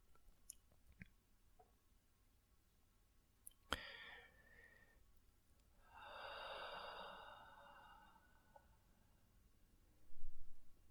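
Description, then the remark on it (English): A long, forceful exhale empties the lungs over a couple of seconds during a breathing exercise, then gives way to near silence as the breath is held out for a count of five. An earlier shorter breath follows a sharp click. “And whenever you're finished with that count of five, on your own time, you're going to release all the air out of your lungs and hold your breath out for a count of five.”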